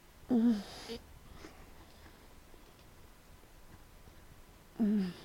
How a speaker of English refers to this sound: She is breathing hard.